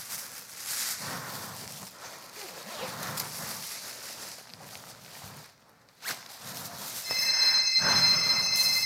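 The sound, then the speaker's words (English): Shuffling footsteps and rustling movement give way near the end to a telephone ringing, a bright, steady electronic trill that starts abruptly and keeps going, clear. “I got a part-time job so I could have a phone. Hello?”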